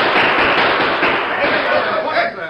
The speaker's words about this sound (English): Suddenly, there was an outburst of shots above his head and that of the crowd.